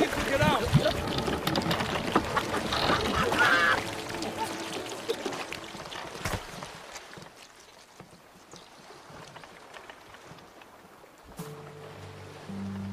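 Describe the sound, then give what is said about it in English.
Loud rushing, splashing water pours into a sinking boat for several seconds amid a shouted voice, then fades to quieter sloshing and lapping, with a low steady hum near the end. “The boat, it's still sinking!”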